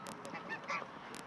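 Several geese honk in a short, overlapping burst, their nasal calls clustered close together over a steady outdoor background, with a couple of sharp higher squawks standing out.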